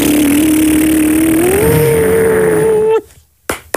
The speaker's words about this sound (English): Here we go. Airplane taking off. Right? Tell me that's different. Tell me that's different. Airplane taking off.